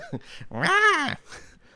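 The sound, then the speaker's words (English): A cat lets out one long, drawn-out yowl that rises and falls in pitch, loud, with a few shorter, softer cries just before and after it; excited house cats are marching around and biting each other. “My cats are in here, and they're marching around, biting each other and yelling because they're so excited.”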